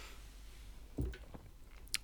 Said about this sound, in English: My chewing's already loud as hell.